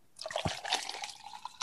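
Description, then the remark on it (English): Tito's vodka glugs and splashes into a glass in one quick, big pour lasting under two seconds, with a soft knock near the start and no one speaking. “That seemed like a lot. That was a big pour.”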